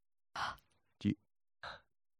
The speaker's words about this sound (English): Those breathing noises are good. So you feel that, right? Like, there's something that happens on your hand.